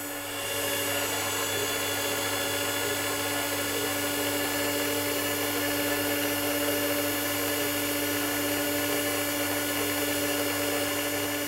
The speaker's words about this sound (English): One of the things that you see is that the drill actually has a milling action. It doesn't just drill down, it mills out the hole, and that means that we get a much more accurate hole when we're doing this process.